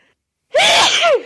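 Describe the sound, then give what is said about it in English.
A single loud sneeze bursts out, a sharp explosive blast with a brief rising vocal tone, standing alone after a moment of quiet. “Oh, bless you again. Loud.”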